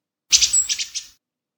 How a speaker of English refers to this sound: That's just one bird. When Ozzy goes into the garden, he feeds the birds. Lots of birds. No, not just one bird, lots. Why have you only got a one bird sound? Because the others flew away.